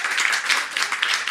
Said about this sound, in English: And just give him a round of applause.